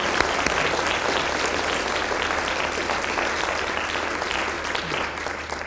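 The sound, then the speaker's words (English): Steady, sustained applause from an audience at an evening event in Houston, honoring the underwriters, staff and volunteers who made the evening possible; a dense wash of many hands clapping at an even loudness throughout, with no one speaking over it. “So if you could just extend a warm round of applause for those who helped make it possible, that's great.”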